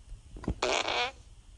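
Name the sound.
fart sound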